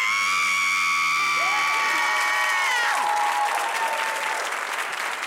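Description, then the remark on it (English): Several voices scream together at once on a 3, 2, 1 countdown in a promotion for the film Scream. The screams are loud and sustained, with high piercing pitches that waver and slide, then dissolve into a noisy mix of cheering and clapping. “All right, I'm gonna join you guys in solidarity. Here we go, 3, 2, 1.”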